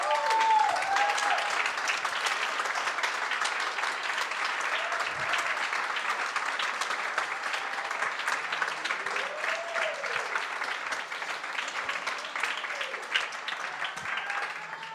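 A large crowd applauds steadily and loudly for the full stretch, a dense wash of clapping with occasional whistles and cheers rising above it, and no one speaking.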